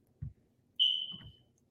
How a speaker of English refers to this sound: Is it your smoke alarm? And full disclosure, I did change the battery. And so it's apparently not the battery. And I just don't know how to operate the smoke alarm. I just got into this apartment last week.